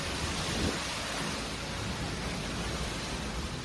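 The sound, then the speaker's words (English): A dense, steady roar of storm wind and heavy rain from Cyclone Judy as it swept through Vanuatu at the end of February, with winds gusting to 200 kilometres per hour. It is loud, with no breaks or voices. “The sound of Cyclone Judy as it swept through Vanuatu at the end of February, bringing strong winds gusting to 200 kilometres per hour, heavy rain, and the evacuation of some residents from the capital, Port Vila.”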